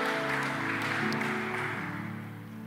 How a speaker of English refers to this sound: Hand clap to the Lord.